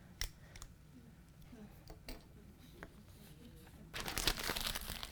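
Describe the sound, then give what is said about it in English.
A piece of paper is handled, rustling and crinkling, with a few sharp scattered clicks and crackles, then a louder, sustained burst of crumpling toward the end. “I want you to get this piece of paper from standing over here in that.”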